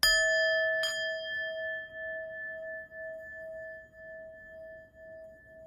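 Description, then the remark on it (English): A meditation bell is struck twice in quick succession during a guided meditation, then its clear, pure tone rings on and slowly fades over several seconds with no voices. “As you listen to the sound of the bell, allow your shoulders and your neck to relax.”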